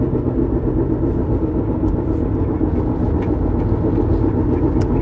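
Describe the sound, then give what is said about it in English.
A steady, loud low rumble of car engines idling in heavy traffic, continuous throughout with a few faint higher clicks and hisses on top and no one speaking. “But I hate this side of town because it's always fucking crowded. It's always an ass of fucking cars here.”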